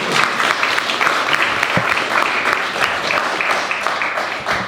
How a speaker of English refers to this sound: Round of applause, please, for Clay Groves.